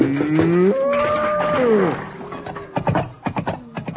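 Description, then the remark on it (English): A single long, loud moo from a cow being milked rises and falls over about two seconds, followed by a few sharp clattering knocks and thuds as the cow kicks the bucket. “That cow's got plenty of time.”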